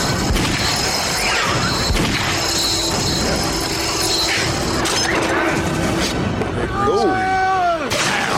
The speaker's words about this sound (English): That's your boy chasing that homeless man down. That man. Oh, shit. That man went through glass and everything. Look at that. Shit.